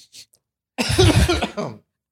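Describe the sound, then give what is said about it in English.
A person blows their nose in one loud, wet honk lasting about a second, with a short sniff just before and a brief trailing snort at the end. “Everyone wants to hear you blow your nose, especially during COVID.”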